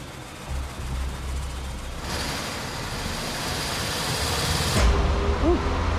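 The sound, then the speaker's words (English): In a mechanics' test, a person in the car revs the engine up to about 2,000 RPM, about cruising speed, a steady sustained roar with a low rumble and a broad hissing noise layered on top before it eases off. “Can you bring the RPMs up to about 2,000, please?”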